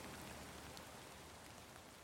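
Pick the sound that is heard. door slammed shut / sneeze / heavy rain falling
heavy rain falling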